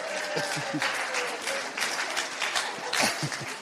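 A crowd applauds an audience member, dense overlapping claps forming a continuous bright wash of sound that holds at an even, moderately loud level throughout, with a few faint voices mixed in.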